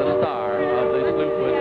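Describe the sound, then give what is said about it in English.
The steamboat whistle of the Mark Twain, a stern-wheel riverboat ready at the dock, sounds one long, steady, loud blast, its rich chord of overlapping tones holding without a break from start to finish. “Oh, that whistle you hear, ladies and gentlemen, means that the Mark Twain is ready down at the dock.”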